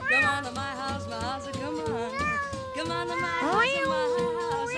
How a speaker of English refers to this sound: I love that meow. It just gets me going.